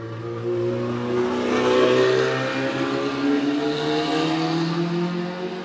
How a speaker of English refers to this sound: know if that was a car or a motorcycle, but that was a very loud engine.